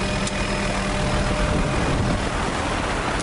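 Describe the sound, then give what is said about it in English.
A small helicopter carrying a vet searching for rhinos drones steadily and loudly throughout, a dense rumbling roar with a constant low throb and no voices. “was already up in another smaller helicopter, looking for the next rhino.”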